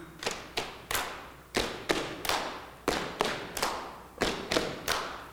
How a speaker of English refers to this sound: Let me hear them stomps. Like you're stomping the devil. Like you're stomping your problems. Like you're stomping your ex-husband, ex-wife. That's good.